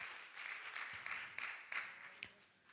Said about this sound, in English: If you believe that, can you clap your hands?